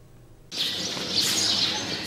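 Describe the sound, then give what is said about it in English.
After a brief quiet start, a sparrow chirps in a busy, high-pitched chatter of tweets that carries on continuously and fairly loud, with no voices. “the Wangs were amazed to find a baby sparrow stuck behind their washing machine.”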